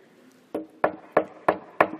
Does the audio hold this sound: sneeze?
no